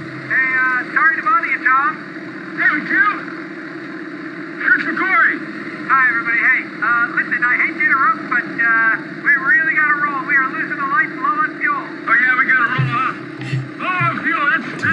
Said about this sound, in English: He's just sat outside of the cockpit of a plane. And then behind him, the director appears in another biplane, Chris McQuarrie.